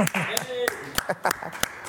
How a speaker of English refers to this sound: Round of applause